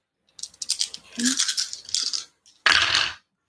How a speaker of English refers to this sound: I was trying to mix up my dice.